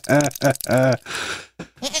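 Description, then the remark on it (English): A goat bleats loudly, three quavering, wavering cries in quick succession, followed by a rougher, breathy call and a short final bleat. “we just ask that you just kill that motherfucking goat.”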